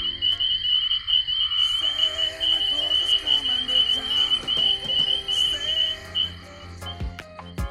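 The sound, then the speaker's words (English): A dense chorus of spring peeper frogs rings out continuously in high, piercing peeps, many calls overlapping into a shrill, bell-like shimmer, with a few sharp clicks near the end. “Ironically, however, the collective sound of a spring peeper chorus is said to resemble the sound of sleigh bells.”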